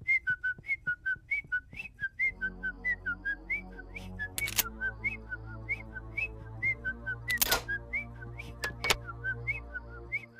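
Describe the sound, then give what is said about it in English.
A clear whistle plays a quick, repetitive run of short notes in a steady pulsing rhythm: the tune from the film Halloween, whistled by Homer while he locks up the house. Low sustained tones join behind it after a couple of seconds, with a few sharp clicks. “I'll just whistle a happy tune.”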